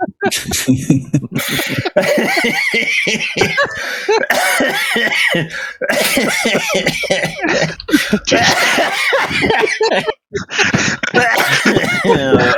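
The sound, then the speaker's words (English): Loud coughing fills the stretch in repeated harsh bursts, with throaty rasps and a few laugh-like sounds mixed in, and barely any pause between fits. “There's that cough.”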